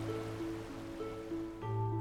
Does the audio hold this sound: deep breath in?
no